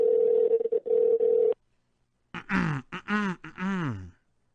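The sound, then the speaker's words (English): An outgoing phone call's line tone sounds in short, steady bursts for about a second and a half, then after a brief silence a person makes a few voiced throat noises. “Pick up your phone.”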